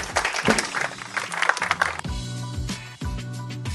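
A crowd applauds with a dense, steady patter of clapping for about two seconds, then music with sustained, swelling chords takes over as the clapping fades beneath it.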